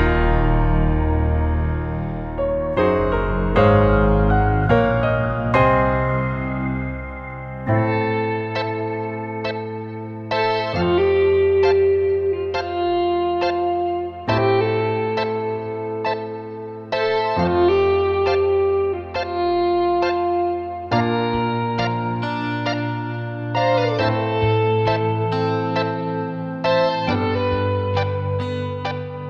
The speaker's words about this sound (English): It's supposed to be him doing that kind of pedal steel thing almost that he did, or like some of the swells